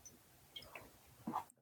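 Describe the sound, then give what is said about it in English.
Someone takes a quiet sip of water, with faint wet mouth clicks and a soft swallow near the end, then a sudden drop to silence. No one speaks. “Sip of water.”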